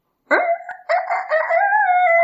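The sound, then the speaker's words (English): A rooster crows loudly, one long drawn-out cock-a-doodle-doo with a brief break early on, then a sustained strained call that holds steady to the end. “I crow, which in rooster language means, wake up, God's people.”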